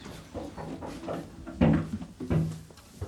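Children knock on a window pane, wanting to come in: a few soft taps, then two sharper, louder knocks, with a short pause between them and no voices.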